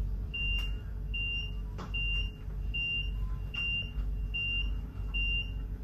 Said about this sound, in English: The following alarm will sound.